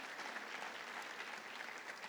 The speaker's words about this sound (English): Dale un aplauso a Jesús. Go ahead and give Jesus a strong round of applause.